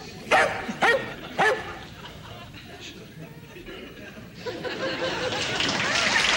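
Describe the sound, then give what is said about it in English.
A dog named Boomer lets out three sharp, loud barks in quick succession near the start, then a murmur of background noise rises and fills the rest. “Girls, you're talking to a dog.”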